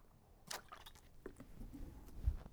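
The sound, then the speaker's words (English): A quiet sip of water with soft wet slurping and squishy mouth sounds, a couple of brief bursts followed by faint swallowing noises, with no talking. “Taking a sip of water.”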